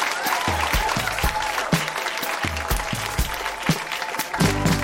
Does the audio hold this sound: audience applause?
yes